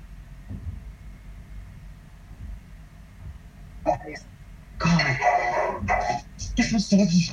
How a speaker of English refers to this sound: Of course, my dog started to bark right then.